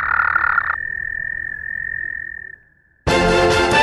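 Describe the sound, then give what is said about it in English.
A toad croaks in a loud buzzy burst, then holds a long, steady, high-pitched trill that fades away. After a short silence, another harsh, loud croak begins. No one speaks. “The COA is asking people to be careful of the toads and to tell animal experts 动物学专家, if they see any in the wild.”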